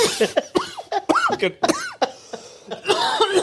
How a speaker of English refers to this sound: You end up coughing your guts up.